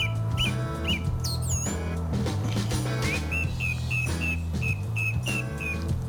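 A thrush sings clear whistled phrases over a steady backing of music, ending in a run of evenly spaced repeated notes that fall into rhythm with the beat.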